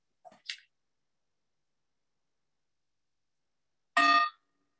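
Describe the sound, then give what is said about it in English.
A single meditation bell rings out clearly with a metallic tone at the beginning of a meditation session and cuts off quickly, after a couple of faint, soft clicks and a stretch of silence. “There'll be three bells, one at the beginning, one at 30 minutes, and one at the end.”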